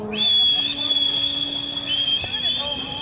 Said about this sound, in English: I'm a good whistler. I learned to whistle once I got a dog. What do you want me to do? Whistle!